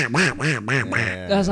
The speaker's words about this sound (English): Every time the duck did this, it made me laugh. When a duck quacked, it made me laugh. Because it sounds like a human laughing.